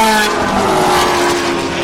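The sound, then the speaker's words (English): Loud, sustained roar of high-revving race car engines at Le Mans, including Ferraris, Porsches, Corvettes, Aston Martins, a Ford GT and a Lotus Evora, with layered harmonic whines and a brief tyre squeal as the cars sweep by; no talking. “There's your pick and mix audio of Ferraris, Porsches, Corvettes, Aston Martins.”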